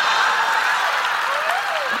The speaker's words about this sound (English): Guys, please, a round of applause. Thank you so much for joining us. Kara Swisher.